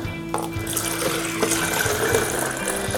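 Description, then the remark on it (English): Spare rinse water pours out of a container in a steady, rushing splash for about three seconds after a rinse, before the fix goes in, with a low mechanical hum running underneath and no talking. “So in 4 seconds I'm going to pour this out.”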